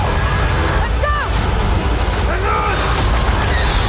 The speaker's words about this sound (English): Oh, yeah, explosions!